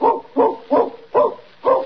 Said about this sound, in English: Listen, I hear a dog. Someone's coming.